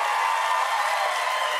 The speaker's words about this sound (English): Now, thank you guys for clapping.